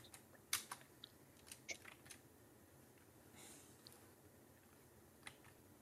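Irregular clicks of typing on a computer keyboard, a quick cluster of sharp keystrokes followed by scattered taps, fairly faint over a low background hum.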